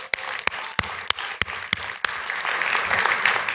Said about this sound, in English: And she wrote that from scratch. So another big round of applause.